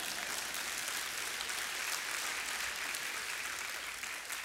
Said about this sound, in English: One person clapping right over here. Thank you.